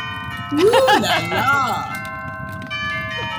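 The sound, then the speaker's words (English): A designer doorbell, rung repeatedly, plays a warbling electronic chime tune, its bright ringing tones lingering and sustaining throughout, fairly loud, with no one speaking over it. “Would you just let me in and drop the doorbell?”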